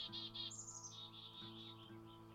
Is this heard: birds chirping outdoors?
yes